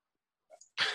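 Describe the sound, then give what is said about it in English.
After a brief silence, a short throaty grunt leads into a single loud, harsh cough that bursts out and holds to the end, with no talking. “You had to cough right over.”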